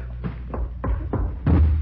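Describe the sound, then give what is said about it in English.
A body slams repeatedly against a padlocked door, trying to break it down: about five dull, heavy thuds in an uneven rhythm, the last one the loudest and boomiest, with no voices. “It's locked. Can you open it? No, it's a padlock. All right, stand out of the way. I'm going to try to break it down.”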